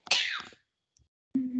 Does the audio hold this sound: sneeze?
yes